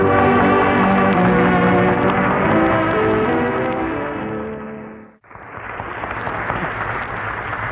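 A sustained musical passage fades out, then after a short gap steady audience applause fills the final seconds, a dense, even patter of many hands clapping with no voices.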